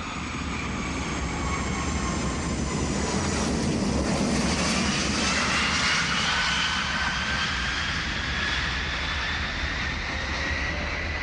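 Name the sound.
airplane engine in flight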